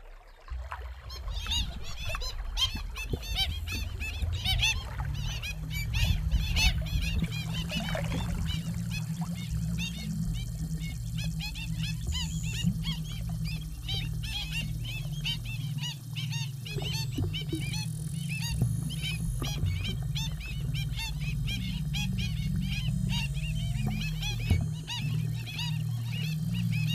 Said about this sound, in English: here's some audio from Madison's work that includes the call of the kakī, the black stilt, and an instrument she has devised for her exhibition.